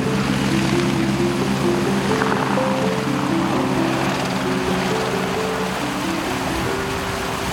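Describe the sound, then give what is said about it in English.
Strong wind roars loudly and steadily on a mountainside at 14,000 feet, with Everest in view, for the whole stretch, with low rumbling buffets and faint shifting hum-like tones underneath. It is getting quite cold. No one speaks. “It's very windy.”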